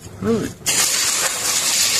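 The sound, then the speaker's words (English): A garden hose sprays water at a man in the yard of a lakefront cottage, a steady, loud hiss lasting over a second, just after a brief voiced sound that rises and falls in pitch. “Hosing him down.”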